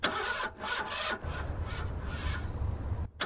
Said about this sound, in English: And they're sitting in this car, and he's trying to start the car. And he's turning the key, and the engine is turning over. The doom, doom, doom, doom, doom, doom. You're hearing the engine turn.